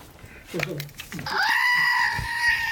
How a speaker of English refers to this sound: Do they hear it different when I do that? Like if I move the scream, does it sound like a drive-by scream? Ready? Did it sound like a drive-by scream? That's what I want to know.